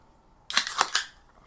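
A beer can cracks open: a sharp metallic snap, then a quick run of pops and a brief fizzing hiss that fades within a second. No voices.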